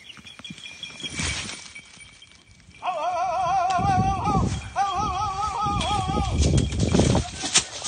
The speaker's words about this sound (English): That's a typical sound a falconer makes to signal to their hawk that an animal they're hunting is getting away. In this case, a gray squirrel.